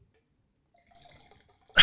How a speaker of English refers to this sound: He's pouring a drink.